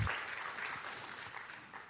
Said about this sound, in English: Come on, can we honor him for just a moment? Come on, can we give him a good round of applause today?